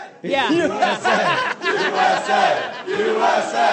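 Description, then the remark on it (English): A loud crowd chants a patriotic rallying cheer, led by a Frenchman, in unison, many voices shouting together in short rhythmic bursts with brief breaks between phrases. “I think it's important to point out that a Frenchman was leading that cheer.”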